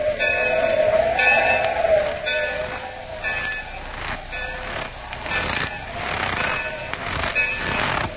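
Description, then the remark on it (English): A freight train rolls steadily on the rails: a loud, continuous rumble with a high metallic squeal early on and recurring clanks and clatters every second or two. “Hey, which freight car is it? It's the one after the next.”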